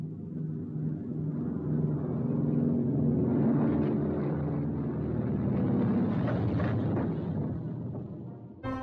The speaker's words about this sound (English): You're listening to the type of planes that would have gone on dry runs at Flanagan Field atop the hill at Prince William during World War II.